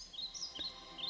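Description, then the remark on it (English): Soft, high birdsong in a relaxation soundscape: a handful of quick chirps and twittering phrases in a gentle, scattered rhythm, the birds moving left and right in stereo, over a quiet, steady background hush, with no voices. “The birds keep on flying around in the kind of stereo lefty-righty thingy.”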